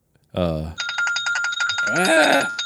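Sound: telephone ringing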